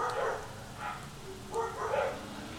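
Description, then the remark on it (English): Dogs bark outdoors on a cool, cloudy autumn day, a few muffled, irregular barks spread across a couple of seconds over steady background hiss, fairly faint. “Do you hear those dogs?”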